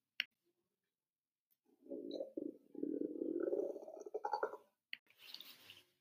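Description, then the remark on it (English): A stomach gurgles and rumbles in a long, low, bubbling stretch that rises in pitch toward the end, bracketed by a few faint clicks and a brief hissy squelch. “Unknown sounds chime in her ears as she also starts to hear her stomach gurgle and rumble.”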